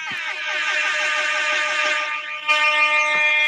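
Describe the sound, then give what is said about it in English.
A loud, sustained air horn sound effect blares for several seconds, a harsh, buzzy honk that holds steady and then jumps even louder near the end, with no voices. “Glad to have his air horn sound effects.”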